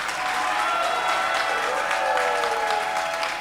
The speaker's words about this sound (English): Give Jesus a mighty clap offering and a shout.